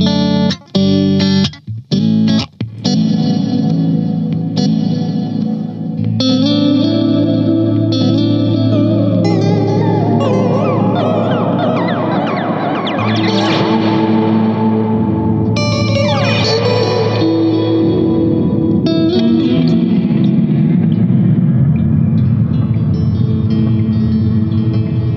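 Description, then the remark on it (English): An electric guitar plays through an Earthquaker Devices Avalanche Run pedal with a dark tape-style delay and reverb, its notes smearing into washy, dark decaying repeats and swelling sustained trails, loud with no talking. “Tape delay is my favourite out of all the delays. Because of that kind of decay and dark.”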